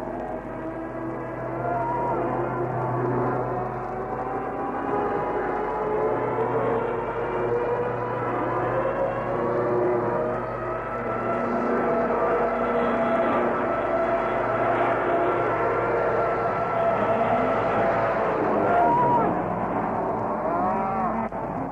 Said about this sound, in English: Darn if I can hear anything. I'm deafened by those planes.